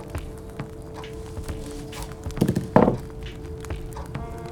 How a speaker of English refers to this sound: Closes the door. You hear the footsteps.